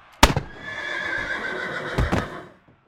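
A horse lets out a single loud neigh, a long quavering whinny lasting about two seconds that begins with a sharp burst and ends in a snorting flourish. No one speaks.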